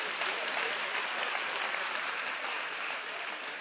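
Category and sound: crowd, audience clapping hands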